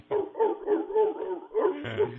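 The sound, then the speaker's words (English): A sea lion balancing a ball on its nose barks in a quick, steady run of about seven hoarse, honking calls, each rising and falling in pitch, fairly loud and with no other voices. “I love how he gets that ball up on his nose, and it just stays there. Throw him a little piece of herring here.”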